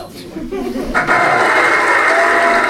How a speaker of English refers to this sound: That was some cheering for you.